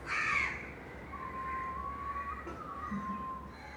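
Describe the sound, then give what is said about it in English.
On a rooftop in India at night or early morning, a crow gives a single harsh caw at the start, followed by a thin, steady whistling tone over a constant low background hum. No one speaks. “a rooftop in India in the dark of night or early morning, but always accompanied by bird noise and the sounds of my neighbours and temple music.”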